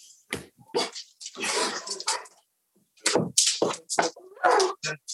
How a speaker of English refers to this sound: That must be your dog going crazy.